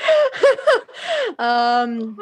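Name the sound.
yawn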